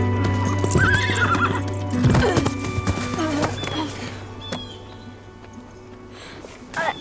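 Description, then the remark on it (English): A horse whinnies loudly while hooves clip-clop in an uneven rhythm, with snorts and shuffling, then a short rustle toward the end, as its rider is urged to take a jump again. “Get right back on that horse.”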